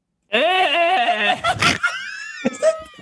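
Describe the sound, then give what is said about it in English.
A person lets out a loud, wavering, strained bleat imitating a screaming goat, holding the cry for about a second before breaking into shorter gasping bursts and a final bleating yelp. “Is that your goat scream?”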